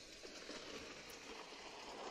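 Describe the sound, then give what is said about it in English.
Torrential rain pours down during a thunderstorm with lightning all around, a steady, dense hiss that never lets up, fairly soft and even throughout, with no voices and no distinct thunderclaps. “The rain is just torrential and the lightning is all around us.”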